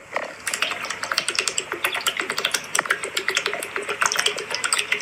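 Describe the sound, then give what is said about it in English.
A person chugging water from a bottle, a continuous run of quick, bubbly glugs and splashy clicks for several seconds, steady, with no talking. “That's like a water bottle pouring out water. Yeah, like it's me chugging water.”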